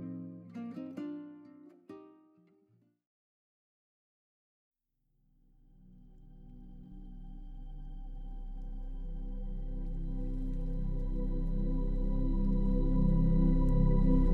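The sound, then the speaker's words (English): A short musical phrase ends, and after a pause a steady rush of running water fades in, swelling gradually louder into a continuous low, even flow with a faint tonal hum. “Relax, my love, and let the soothing sounds of running water lull you into deep, restorative sleep.”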